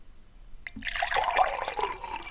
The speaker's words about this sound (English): If you do a little transition, are you trying to pour some of your blender bottle water into my thing? A little ASMR action, too. Here we go. I'm nice and close.